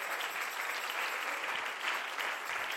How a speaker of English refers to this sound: Clap your hands to the Lord together.